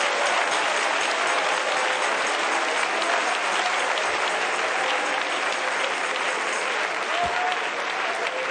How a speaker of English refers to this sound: Oh, give the Lord a hand clap. Praise God.